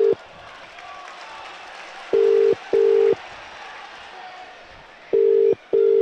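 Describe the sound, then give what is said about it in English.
A phone ringback tone purrs in clear double bursts, two pairs a few seconds apart, loud and steady over a faint murmur of background noise while the call waits to be answered. “Oh, we're ringing. Ringing.”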